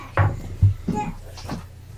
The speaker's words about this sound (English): Well, there's no baby slamming doors in the background. God damn it, baby.